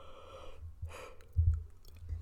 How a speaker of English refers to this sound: I had to yawn for a second because I just woke up, but I was just ready to record.